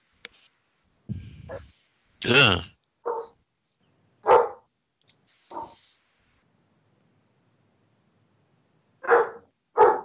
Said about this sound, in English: Uh-oh. Dog's barking.